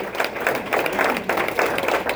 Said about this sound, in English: Give this guy a round of applause.